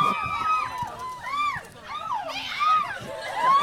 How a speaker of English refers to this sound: So please welcome Shailene Woodley, Theo James, and Neil Berger. In a minute. Here they come. Keep cheering and whooping and so on because it makes them feel welcome. And then they'll enjoy it.